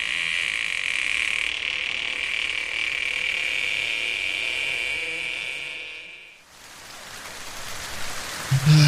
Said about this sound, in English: God, oh, and it's fucking raining as well.